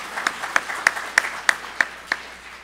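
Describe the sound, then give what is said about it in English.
A single person claps their hands seven times in a quick, steady rhythm, each clap sharp, with no talking around it. “Hand clap for California.”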